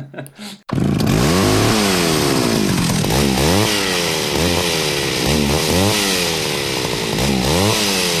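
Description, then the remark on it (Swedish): A loud chainsaw roars to life after a brief quiet start, then revs up and down repeatedly in rhythmic surges, its motor whining steadily for several seconds. “Fram med sågen bara.”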